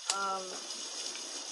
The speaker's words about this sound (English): It's raining inside the store. It's not raining outside.